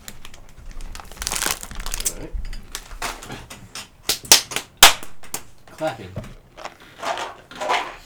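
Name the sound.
clapping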